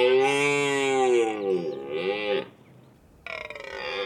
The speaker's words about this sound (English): Red deer. It's the rut, and these boys are bellowing, loudly. Vocal intimidation is part of their arsenal.